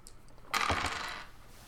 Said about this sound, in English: I'll roll your dice for you